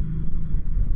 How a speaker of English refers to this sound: motorcycle.